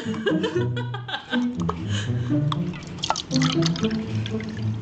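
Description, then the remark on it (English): Fizzy winter spiced cranberry Sprite soda poured and sipped, with crackling bubbles and small drips under low chuckling and murmuring voices throughout. “I think Sprite fans at home can tell that we are sipping on the winter spiced cranberry Sprite.”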